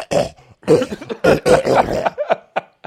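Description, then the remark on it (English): A voice imitates the gross, hacking cough the character Billy Butcherson makes when he opens his mouth: a string of loud, wet, retching bursts in quick succession, tapering into a few short, sputtering coughs at the end. “And he does that disgusting cough when he opens.”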